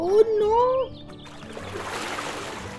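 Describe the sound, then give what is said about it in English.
A brief wavering, voice-like tone gives way to a steady wash of splashing, rushing water that keeps going at moderate loudness, as if water is surging and rising. “Oh no, there's so much more water now.”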